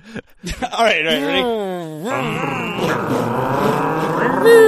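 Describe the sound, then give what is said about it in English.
Several voices loudly mimic revving car engines, their pitch rising and falling in overlapping vroom-like drones for a few seconds, with no real vehicle present. “Let's all just make engine noises.”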